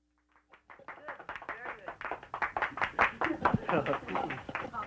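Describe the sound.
An audience breaks into applause: a few scattered claps at first, quickly swelling into dense, steady clapping that grows louder toward the end, with some crowd voices mixed in.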